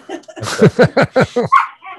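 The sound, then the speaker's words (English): Dogs bark loudly in a rapid run of about six or seven sharp barks, one right after another, with a short yip at the end and no talking. “Hey, get the dogs out of here.”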